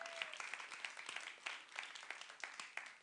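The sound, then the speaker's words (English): An audience gives the Lord a hand clap, clapping their hands together in a fairly steady, repeated rhythm, the crisp claps blending into soft applause at a modest volume with no voices over it. “Come on, y'all give the Lord a hand clap for that.”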